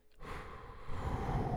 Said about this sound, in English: What's with the heavy breathing? What's going on?